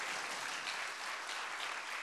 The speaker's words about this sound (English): Yes, if you believe that, we can clap our hands for that.